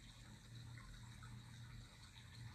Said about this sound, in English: Like this brook passing through pebbles, rocks, branches. Always moving forward.